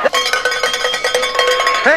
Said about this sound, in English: There's the bell. There's the bell start to come.